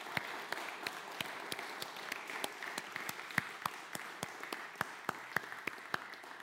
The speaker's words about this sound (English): Glory to God. Let's applaud the Lord.